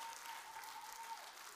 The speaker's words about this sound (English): And even if you don't get it, clap your hands like God just poured out on you an awesome blessing.